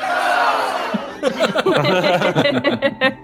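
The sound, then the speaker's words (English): A crowd of voices shouts a loud collective cheer, followed by a burst of overlapping excited hollering and laughter, sounding like a canned huzzah sound effect played clearly. “Let's get a Sirenscape applause sound. I don't know if I have applause. Wait, where's the huzzah?”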